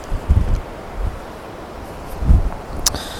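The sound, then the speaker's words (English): Strong wind buffets the microphone outdoors during photography, shaking the camera, in heavy low rumbling gusts, with a few loud thumps and a constant rough roar between them. No one speaks. “It might just be too windy.”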